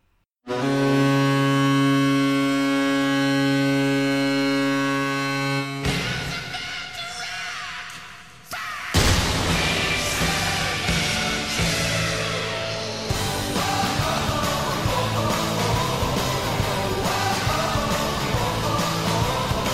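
A Columbus Blue Jackets ice hockey goal celebration: a long, loud, steady goal horn blares for several seconds, then a sharp goal cannon blast cuts in over a roaring, cheering crowd that keeps going with music underneath.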